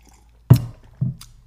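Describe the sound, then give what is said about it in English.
Two quick wet slurps of a drink, the first sharper and louder, the second softer and followed by a brief airy hiss, with no talking. “Slurp tests only work if you're in the same room.”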